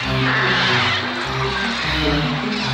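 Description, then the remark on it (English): A loud, dense din of harsh, angry bird calls from the trailer for Alfred Hitchcock's The Birds, crow-like caws overlapping continuously with no pause, agitated throughout. “Then we start to hear angry bird sounds.”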